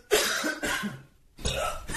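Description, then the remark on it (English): A loud cough-burp: several harsh, throaty bursts in quick succession, a short pause, then another rough burst, with no talking. “And maybe we can get that guy to try to imitate your vocal patterns with your cough burp.”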